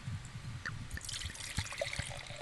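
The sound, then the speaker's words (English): Wine pours into a glass, a steady gurgling trickle with soft splashes and glugs that runs the whole time at a fairly quiet level, with no voices. “Oh, man, you just keep nailing these pours, Sam.”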